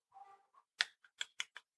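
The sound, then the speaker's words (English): Dice rattle briefly, then tumble onto a hard surface in a quick run of five sharp, hollow clacks, fairly quiet, with no voices. “Now, you know, I think of rolling the dice.”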